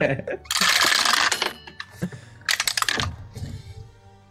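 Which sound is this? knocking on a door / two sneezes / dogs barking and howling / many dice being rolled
many dice being rolled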